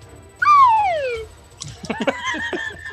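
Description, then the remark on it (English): A single slide whistle glides downward in a smooth, drooping pitch sweep lasting under a second, fairly loud, followed by a busier jumble of chattering, voice-like sounds. “I like to think with the slide whistle sound that he goes to swing and it's just like a rubbery, like...”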